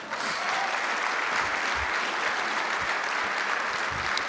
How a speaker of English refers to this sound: You guys can clap while I pull it together.